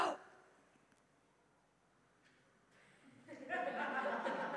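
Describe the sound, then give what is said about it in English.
A long, deep breath drawn in through the mouth, airy, swelling in loudness after a few seconds of near silence and a faint sound at the start. “And just take one breath and breathe in the oxygen and that's, think that that's okay.”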